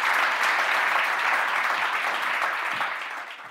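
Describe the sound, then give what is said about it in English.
A crowd claps steadily in a dense, continuous wash of applause that holds strong for a few seconds, then begins to thin and fade toward the end. “Can we have a big round of applause for all of these?”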